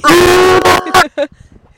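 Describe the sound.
A harsh, distorted metal-style vocal scream made by cupping the microphone, loud and raspy with a buzzing, horn-like tone, held for nearly a second, then followed by two short, choppy vocal bursts.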